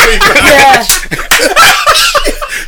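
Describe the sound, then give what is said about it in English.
A voice imitates a whip lashing against bare skin, as of a naked man flogging himself, making several sharp, slapping bursts in an irregular rhythm, loud, with snickering laughter mixed in between the strikes. “he's flogging himself like... naked as well.”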